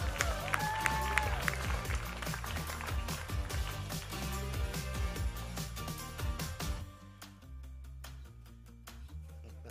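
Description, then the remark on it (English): A church audience applauds its children's church workers in a dense, sustained wash of clapping that runs for several seconds, then thins and softens toward the end, with a few voices mixed in. “Clap for all our children's church workers.”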